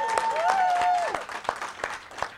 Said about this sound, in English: Say hello to my dad. Or give him a round of applause.